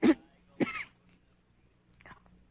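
person coughing

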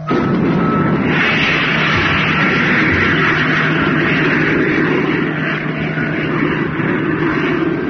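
rocket engine firing

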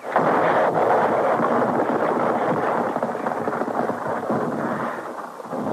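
explosion

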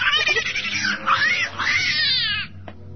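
cat yowling

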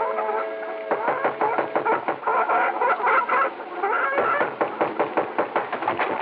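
chickens clucking

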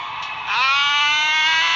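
audience cheering and screaming

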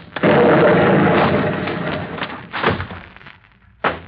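explosion

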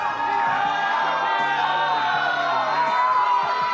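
audience cheering

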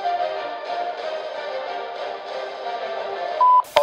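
answering machine beep

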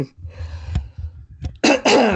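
throat clearing

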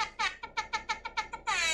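air horn blasts

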